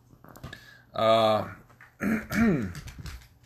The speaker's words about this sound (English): pardon me. Let me clear my throat.